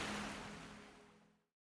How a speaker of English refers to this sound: You're listening to ….